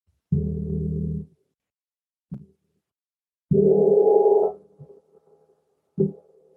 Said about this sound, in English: And I have a gong behind me. You may have heard the gong. So I'll just ring that. I don't know if that will.